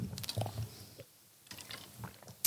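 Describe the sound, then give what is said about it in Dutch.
Someone takes a quick sip of water: soft handling clicks, a couple of low gulping swallows, then a sharp little clink near the end. Quiet throughout, with no talking. “Een slokje water.”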